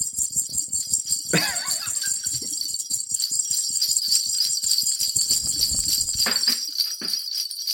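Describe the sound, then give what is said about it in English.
Bells jingle continuously in a bright, shimmering wash, shaken in a steady rhythm with a few sharper clanks along the way. No one speaks. “Oh, one of the bells are fell off.”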